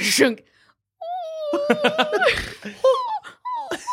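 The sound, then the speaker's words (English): A video game tree lets out a string of high, wavering puppy-like whimpers, fairly loud, with bursts of laughter breaking in over the whines. “Oh no, it whimpers like a puppy.”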